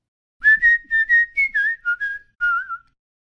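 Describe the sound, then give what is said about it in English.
A professional whistler whistles the Toys R Us jingle, a short, bouncy tune of about ten quick notes with a couple of pauses, clear with no other sounds. “Have you heard that jingle before? It's the Toys R Us jingle.”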